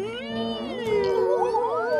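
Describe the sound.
A voice imitates a theremin, sustaining one eerie, wavering tone that swoops and slides up and down in pitch for about two seconds, steady and fairly loud, with no words.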